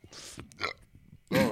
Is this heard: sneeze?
yes